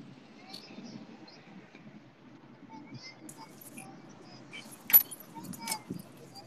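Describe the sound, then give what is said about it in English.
Keys jangle in a few quick metallic bursts, the loudest near the end, over a low rumble of what sounds like a car interior with faint background voices. “I left my keys in the car.”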